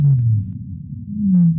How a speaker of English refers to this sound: Team leader Aaron Olson sped up this one sound made by feeding whales to make it easier for us to hear.